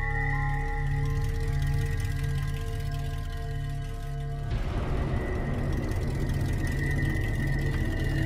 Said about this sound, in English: Oh, you know what? My car is here. I'll see you at work, okay?